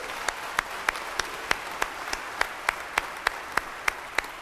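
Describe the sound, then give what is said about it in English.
A crowd applauds steadily, a wash of many hands with sharper claps cutting through in a regular, even beat, with no voices. “Could you give a hand clap for that?”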